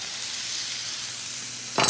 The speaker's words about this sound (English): So I can throw the veggies in here and get them going. Add red and green bell peppers. We want the sizzle. The sizzle is good. And purple onions.